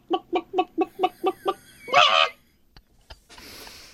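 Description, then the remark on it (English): A voice imitates a clucking hen: seven quick, evenly spaced clucks, then a louder drawn-out squawk, followed by a couple of faint clicks and soft hiss. “Because that's a brilliant chicken that's impression.”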